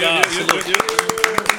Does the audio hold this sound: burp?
no